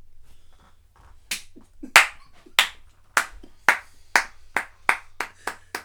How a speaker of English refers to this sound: I'm giving a standing applause for that one. Yeah. Your clap sounds like a basketball falling on a court.